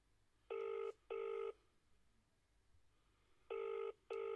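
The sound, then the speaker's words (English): A ringback tone on an outgoing phone call: two steady double bursts, each pair of short tones repeating after a pause, clear and moderately loud with no voices. “It's ringing.”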